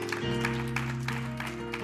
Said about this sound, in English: Give him one more hand clap of praise tonight.